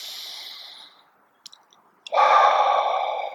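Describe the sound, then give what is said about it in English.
A slow, deep breath taken while sitting in meditation: a soft airy inhale fades out, a brief pause with a couple of faint clicks, then a fuller, louder exhale rushes out like a long sigh. “But just taking a few big breaths, so breathing in deeply.”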